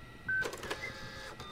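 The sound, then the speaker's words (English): A small ultrasound printer whirs briefly as it prints out an image, with thin high-pitched electronic whines and clicks, fairly loud, with no voices. “Printer works, too.”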